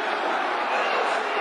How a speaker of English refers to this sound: That's a derision. That's a derision of the Millwall crowd, as you can hear.